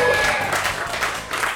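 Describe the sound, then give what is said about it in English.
A burst of audience applause for a guest being introduced on a game show, a dense wash of many hands clapping at once, steady and fairly loud for a brief moment with no one speaking over it. “Big round of applause.”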